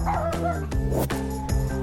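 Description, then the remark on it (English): A Shetland Sheepdog barks sharply and loudly, about four or five yips in quick succession with brief whiny tones between, with no talking. “Except for the barking and the shedding.”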